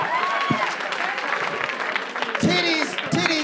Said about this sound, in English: You know what? You got a hand clap of praise for titties, amen?